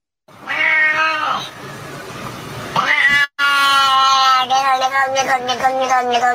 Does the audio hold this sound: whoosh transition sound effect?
no